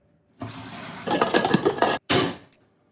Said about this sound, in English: First thing you're going to need to do is cut these fucking potatoes up, put them in a pot with some salt, and fill it with cold water.